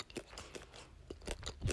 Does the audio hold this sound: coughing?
no